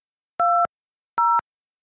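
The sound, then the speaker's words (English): Two telephone keypad tones beep in sequence as a PIN is entered to join a Telelink Conference call, each a steady dual-pitched electronic tone lasting about a quarter second, separated by a short silent gap. “Welcome to Telelink Conference. Please enter your PIN.”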